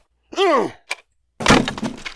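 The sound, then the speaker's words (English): A swooping, voice-like tone and a short knock, then a loud smash as a thrown orange hits a cat clock, with breaking pieces clattering and rattling for about a second. “Nice throw. I had to do something about that creepy cat clock.”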